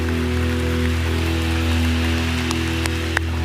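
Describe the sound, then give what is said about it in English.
A church audience applauds two people standing up, a steady, dense wash of clapping that holds at an even level throughout, with a low electrical hum running underneath and no voices. “Church family, would you give these two folks a round of applause and just stay up?”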